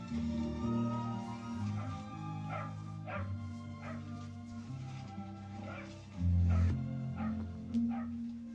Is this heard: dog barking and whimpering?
yes